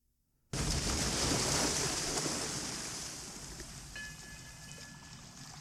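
A ship crashes in the Hudson River within sight of New York with a sudden, loud roaring impact after a moment of silence, then a heavy rushing rumble slowly fades while faint metallic groans ring out near the end.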